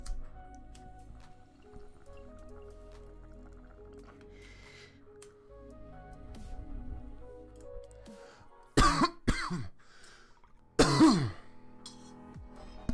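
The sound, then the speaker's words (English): Low, steady bong water bubbling for several seconds, then a few sharp, loud coughs after a bong hit: a quick pair followed by another harsh burst after a short pause. “I always cough. Comment if you cough too, if you ever take a bong hit.”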